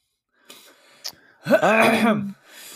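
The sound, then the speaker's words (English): A loud, close-up throat clearing right at the microphone: a couple of small catches, then a long rough, voiced rasp lasting nearly a second before it fades to breathy quiet. “Yeah, clear your throat again directly into the mic next time.”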